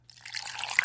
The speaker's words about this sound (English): it makes it look like you went to the bathroom and you're peeing.